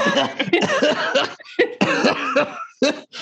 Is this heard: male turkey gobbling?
no